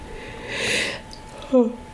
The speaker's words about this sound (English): Oh, sorry, you have to yawn now?